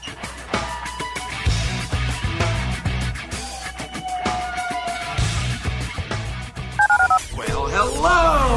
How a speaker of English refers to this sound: To call into the HRNP listener line, dial 713-780-ESPN. Dial the phone.